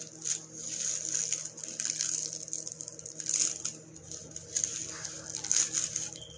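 A steady patter of rain with a continuous hiss and irregular soft taps that swell and fade slightly, with no one talking.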